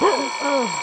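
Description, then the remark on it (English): A telephone rings loudly, a steady shrill burst of bright metallic tone that fills the short moment without any voices. “The phone was frightening.”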